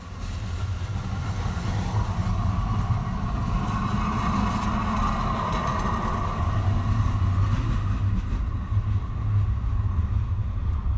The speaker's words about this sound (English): And let's just listen to this J Church municipal railway train as it rolls away.